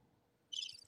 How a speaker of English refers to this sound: Crickets. Can I get a cricket sound?